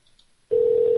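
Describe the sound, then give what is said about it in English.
After a moment of near silence, the steady electronic ringing tone of an outgoing phone call starts abruptly and holds loud and even through the end, with no voices. The call is being placed to a guest of Poker Fraud Alert Radio. “Now he won't answer, watch.”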